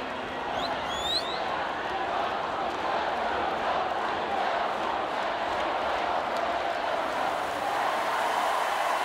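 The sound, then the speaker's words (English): A large crowd cheers and claps along in a steady, dense roar that holds an even loudness for the whole stretch, with a few high whistles near the start. “And you could hear there as well the crowd all cheering and clapping along as well”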